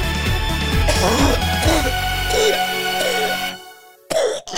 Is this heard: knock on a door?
no